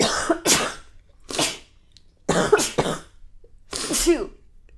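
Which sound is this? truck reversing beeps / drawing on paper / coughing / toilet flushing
coughing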